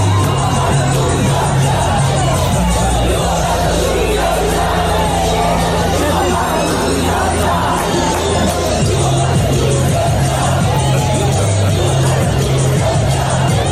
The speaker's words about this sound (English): And then I don't know if you saw this, but all the protests that are happening right across North America. Yeah. The one in LA, the crowd starts singing this song at the police.